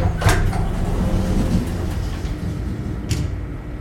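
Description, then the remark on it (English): Heavy metal lift doors slide apart over a low mechanical rumble, with a sharp scraping clunk at the start and another near the end as they finish moving. “The metal doors creaked, then began to slide apart.”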